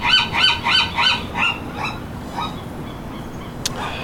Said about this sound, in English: Seagull has something to say about it.